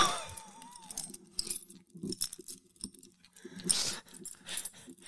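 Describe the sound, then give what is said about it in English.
Keys jangling in several short, irregular bursts of bright metallic clinks, with soft handling rustles in between and no one talking. “I can't wait to stick these keys to my door later.”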